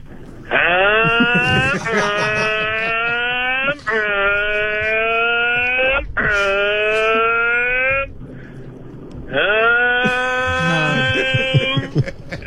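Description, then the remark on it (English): A person's voice imitates a revving motorbike engine in five loud, sustained bursts, each rising in pitch like a throttle opening, with a short pause before the final rev. “So just start making a motorbike sound for me.”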